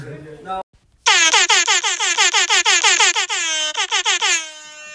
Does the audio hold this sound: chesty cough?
no